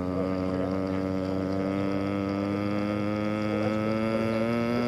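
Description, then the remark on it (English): A voice imitates an RB211 jet engine of an L-1011 airliner starting up, holding a steady, buzzing drone with a faint upward rise for about five seconds, fairly loud, with no other talk. “It's those RB211s, man. Yeah. You hear those things start up in the morning and they go...”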